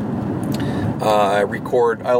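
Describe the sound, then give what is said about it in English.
Steady low road rumble fills the inside of a moving car, a constant hum under a man's voice as he talks into the microphone. “I like to record my podcast in my car, in between, like, going into work, coming home, maybe going out doing errands, and then I do record at home as well.”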